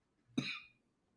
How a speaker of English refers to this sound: That cough is concerning to me, but you'll be fine, I'm sure.